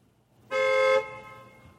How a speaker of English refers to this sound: I think that horn was not even a real horn. It's had echo in it, that horn. You think that's the ghost's car? Let me hear that.